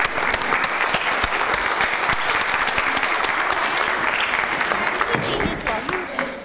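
A crowd claps steadily in a loud, dense round of applause lasting several seconds, the many overlapping hand claps forming a continuous crackling wash that tapers slightly at the end.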